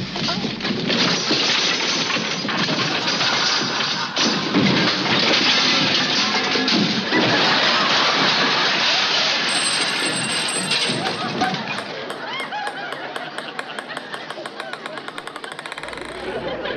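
A long, loud avalanche of junk crashing out of an overstuffed closet, clattering and banging nonstop for many seconds before thinning into lighter rattles and tinkling jingles at the end.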